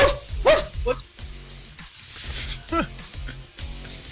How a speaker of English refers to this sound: he's got the dog in the background, man.